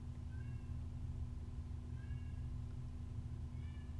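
A cat meows three times in short, high calls spaced a second or more apart, fairly faint, over a steady low electrical hum with no one talking.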